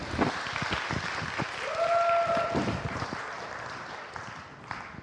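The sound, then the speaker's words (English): An audience in St. Giles bursts into steady applause for a 10K run, many hands clapping densely for several seconds before tapering off, with a brief whoop or whistle rising over the clapping midway. “I thought I might get a round of applause for that.”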